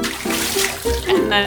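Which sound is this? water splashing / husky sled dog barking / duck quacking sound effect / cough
water splashing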